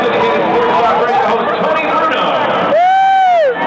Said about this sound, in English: Crowd gone wild at Angel Stadium.